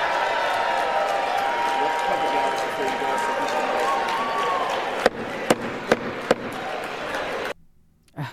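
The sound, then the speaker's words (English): Democrats in a legislative chamber cheer and applaud loudly and steadily, voices mixed in, after Speaker Johnson announces the vote count of 214 yeas to 216 nays and that the resolution is not adopted; then four sharp knocks ring out before the noise cuts off abruptly. “They're cheering for open borders.”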